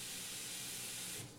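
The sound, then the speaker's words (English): A steady rushing hiss of water pouring into a container, fairly loud, running continuously before tapering slightly at the end, with no voices. “I was waiting for you to finish filling your water.”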